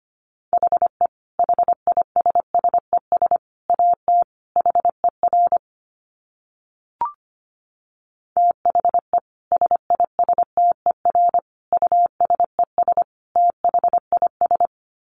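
Fast Morse code beeps at 25 words per minute in a single steady pitch, keyed in rapid bursts of dots and dashes, with a brief pause and a faint click partway through before the sending resumes.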